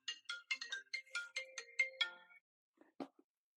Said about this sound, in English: Apologies, my phone just blew up.